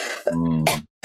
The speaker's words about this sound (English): excuse me. Bless you.